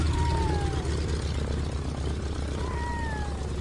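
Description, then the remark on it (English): A float plane's engine drones steadily as it taxis to the far end of a lake, a constant low propeller hum under broad rushing noise, with two faint gliding whistle-like calls rising above it. “And it hits you first, and it hits you hardest when the sound of that plane just starts to fade.”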